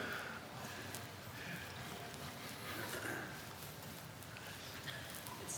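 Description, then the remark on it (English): Water drains steadily through pipes with a soft, continuous gurgling rush and occasional faint clicks and drips. It sounds muffled, with no voices. “That's water draining, isn't it?”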